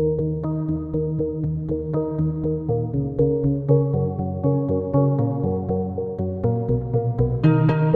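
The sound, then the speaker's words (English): Two layered instruments, electronic beeps with chorus, reverb and delay and a Morse code-like piano sound, both with a harsh attack, play a repeating melodic loop with a steady pulse, closing with a couple of short, bright staccato stabs at the very end. “Did you hear those two little staccato stabs? Those were my way of signaling the end of the loop, so it's not like you're floating in random land forever.”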